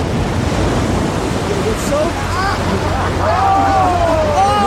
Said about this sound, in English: Neil Kinnock there falling over in the water.